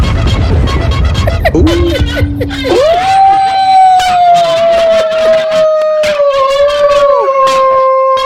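A dog howls in long, drawn-out wavering notes, loud, with a second howl overlapping near the end after a brief rumbling start.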